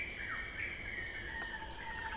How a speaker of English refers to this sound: When this happens, there are shrill bird cries and whistles of all sorts of different sounding animals coming from the foliage all around you.